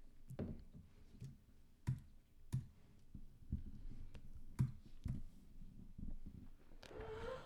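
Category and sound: household object, chair squeaking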